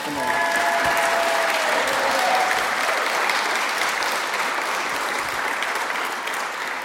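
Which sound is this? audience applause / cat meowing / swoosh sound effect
audience applause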